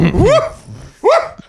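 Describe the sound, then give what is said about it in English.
A dog barks twice, loud, with a brief pause between the two sharp, yelping barks and no talking. “Now the moron dog. The moron twins will show up.”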